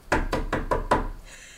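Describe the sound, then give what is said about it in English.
Five heavy blows of a giant handled knocker bang against a big castle door in quick, even succession, each a loud booming thud, followed by a brief lingering ring as the last impact fades. “You, like, pull it back and it just smashes into the door, making this loud boom sound.”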